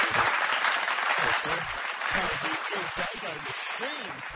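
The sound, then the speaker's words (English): An audience claps steadily throughout, a dense, even wash of applause that stays fairly loud, with voices talking over it the whole time; applause for Nish on Triple M radio. “We've got some more of that applause for Nish.”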